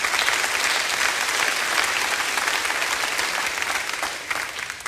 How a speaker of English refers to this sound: We put it in front of you 400 children who needed adopted. 400 children who needed sponsored, and we sponsored every single one of them. You can clap for that.